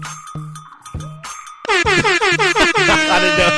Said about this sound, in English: That was the most uncomfortable air horn I've ever given.